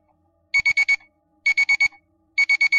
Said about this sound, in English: The alarm on the timepiece went off. They both looked at it simultaneously.